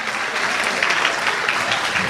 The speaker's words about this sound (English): Round of applause for your round two comics. You'll see them in a little bit.